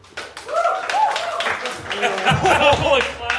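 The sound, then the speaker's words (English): A few scattered hand claps from a small audience, thin and uneven, mixed in with people talking and murmuring over them. “That's the worst reception I think you've got.”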